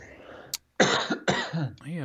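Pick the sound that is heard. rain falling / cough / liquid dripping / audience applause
cough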